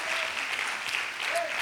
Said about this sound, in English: Why don't you give the Lord a hand clap of praise one more time before you take your seats?